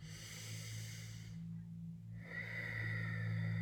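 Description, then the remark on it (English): A slow, deep breath drawn in during a guided breathing exercise, a brief pause, then a long breathy exhale, steady over a low constant hum, with no talking. “One more deep breath here.”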